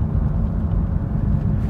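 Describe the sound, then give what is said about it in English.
A car's steady low road rumble drones on continuously, even and fairly loud, like the noise inside a vehicle cruising fast along empty suburban, rural-fringe side roads on a drive to work, with no one speaking. “There's never any cars, so I can drive as fast as I want.”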